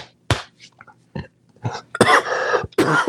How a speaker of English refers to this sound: Oh, man, I can't get the phlegm out of my throat.